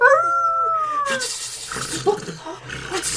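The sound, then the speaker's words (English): A voice imitates a wolf howl: one long, wavering harmonic cry sliding slowly downward for about a second, clear, then giving way to breathy noise and scattered vocal sounds. “It's getting dark. It's the wolves again. Wolves.”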